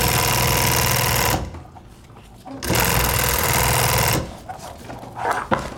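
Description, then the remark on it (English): An industrial sewing machine, used to make custom river drop bags in an outdoor gear shop in downtown Craig, stitches in two loud, rapid bursts of dense mechanical chatter, each lasting over a second, with quieter pauses and faint handling noises between. “I'm sitting in front of an industrial sewing machine, and I make custom drop bags for people.”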